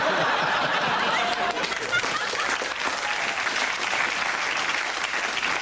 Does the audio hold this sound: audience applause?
yes